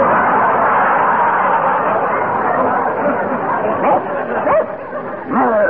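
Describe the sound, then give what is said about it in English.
A hypnotized man, told he is a big, brown Airedale, imitates the dog's barking with a few yelping, woofing barks toward the end, heard over a steady wash of crowd chatter and background noise. “…, you are an Airedale. A big, brown Airedale. Speak.”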